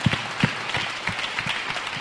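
An audience bursts into steady applause for four people, many hands clapping in a dense, continuous patter with a few sharper claps standing out at the start.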